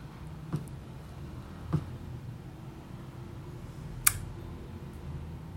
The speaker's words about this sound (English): Yes, there are some bits where I click on the keyboard.